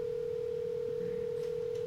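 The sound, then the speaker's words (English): A steady, unbroken telephone line tone hums throughout as a man phones his father, fairly quiet and even, with faint background noise and no voices. “He'll take a phone call in the middle of a podcast.”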